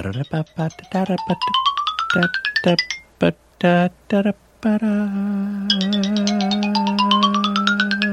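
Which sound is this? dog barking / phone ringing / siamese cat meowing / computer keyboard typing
phone ringing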